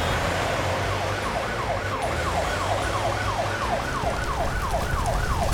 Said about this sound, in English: Wait, that siren. It must be Elsa. Let's follow it.